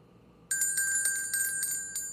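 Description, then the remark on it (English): A bright metallic bell sound effect, used to mark a new category, starts after a brief pause and rings steadily, with rapid repeated strikes over a sustained high, shimmering tone. It lasts under two seconds, with no voices. “That's the sound effect for new category. Nice. Wasn't much of one. We could have got a better bell than that, but we're going to take it.”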